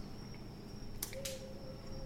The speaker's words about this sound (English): And sorry, it's not nighttime. So many crickets down here. I forgot. I was like, it's nighttime. No, it's daytime.